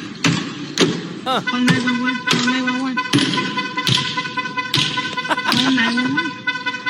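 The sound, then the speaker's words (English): A vandal's hammer strikes a Cruise self-driving car in San Francisco again and again, about a dozen sharp, loud, irregularly spaced blows with a ringing, metallic edge, over a steady tonal hum and faint voices. “a vandal in San Francisco attacked a self-driving car, cruise car, with a hammer”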